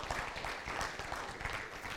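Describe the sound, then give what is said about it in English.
A church audience at Osterville Baptist Church applauds in a steady, dense patter of many hands clapping at once, sustained evenly throughout, with no voices standing out. “Yes, you may clap for him.”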